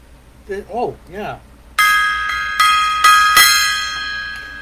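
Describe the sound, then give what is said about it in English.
A brief wavering vocal sound, then a gong is struck about five times in quick succession, each loud metallic hit ringing on with bright sustained overtones that linger and fade at the end. “Gong time there.”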